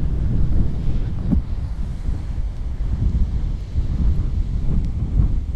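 Strong wind buffets a microphone outdoors on a windy day, a steady low roar with gusty thumps rising and falling throughout, loud with no voices.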